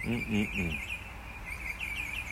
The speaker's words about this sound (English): Listen to those birds.